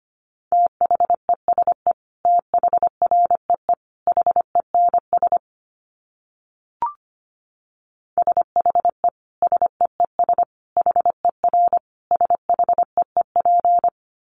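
Rapid Morse code at 25 words per minute keyed on a single steady mid-pitched tone, fast dits and dahs in two runs separated by a short pause with a brief click between them.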